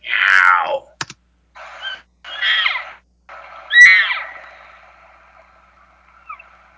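A cow gives a series of rasping, meow-like calls: a strong descending wail, then shorter gravelly bursts and a final squealing cry, with brief pauses between, clear. The cow, head up and ears forward, is seeking her calf.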